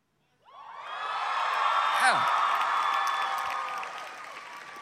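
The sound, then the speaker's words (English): A large crowd of high school students suddenly erupts into loud, sustained screaming and cheering when the hashtag high school comes up on a screen, with shrill whoops rising above the roar for several seconds before it slowly begins to ease. “Now, if you're an adult and you're not into Twitter, what this is all the high school students just... screamed out loud because they could identify hashtag high school.”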